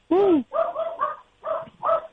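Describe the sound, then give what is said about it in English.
A dog, Levi, barks five times in quick succession after a knock on the door, fairly loud, the first bark drawn out into a rising and falling yowl, the rest shorter and choppy. “He's not super barky. Like he needs a squirrel. He needs another dog.”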